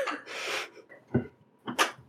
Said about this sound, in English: Sorry, dogs are chewing on bones. Great audio for our podcast listeners.